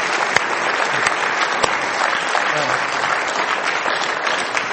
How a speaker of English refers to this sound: Weren't they great? Shall we give them a clap?